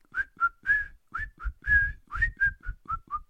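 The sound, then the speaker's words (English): A person whistles the nursery rhyme This Old Man, the unofficial Columbo theme: a simple, bouncy melody in a quick series of short clear notes with brief gaps, fairly loud, with no talking. “He's always whistling This Old Man.”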